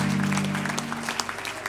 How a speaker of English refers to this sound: Can you give the Lord a hand clap of praise one more time this morning? Thank you, Jesus.